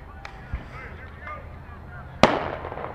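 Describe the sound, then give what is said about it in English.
Fireworks go off outdoors at a ballpark before a championship game: a faint pop or two early on, then one sharp, loud bang followed by a rumbling tail, over a steady background murmur. “Fireworks. That's how you know it's championship.”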